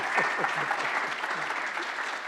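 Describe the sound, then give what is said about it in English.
A large church audience claps steadily and loudly after a baptism, with scattered cheers and whoops rising over the dense applause throughout. “We celebrate it. We cheer for it. And we clap because it's good news.”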